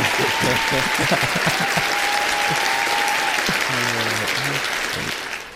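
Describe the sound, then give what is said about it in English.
A crowd applause sound effect: loud, steady applause fills the whole stretch, a dense rush of clapping that holds level and fades slightly at the end, with a few faint tonal sounds and murmurs mixed underneath. “Get the crowd in here.”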